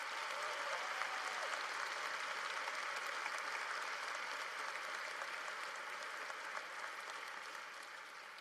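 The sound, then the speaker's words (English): An audience at a Northwest Christian School graduation applauds the teachers in a sustained round of clapping. It is a dense, steady wash of many hands that holds at an even level throughout, without any voices. “So if you wouldn't mind joining me to just honor your teachers that are right there behind you with a big round of applause.”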